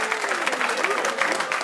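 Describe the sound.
Sustained audience applause for two show guests at the University of Toledo, a dense steady patter of many hands clapping at once, loud throughout, with faint voices mixed into the crowd.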